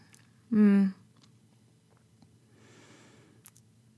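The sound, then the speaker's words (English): A woman gives a single loud, drawn-out yawn with a voiced, falling groan, followed by a quiet, breathy exhale and a faint click near the end. “Oh, her body. Oh, yawning.”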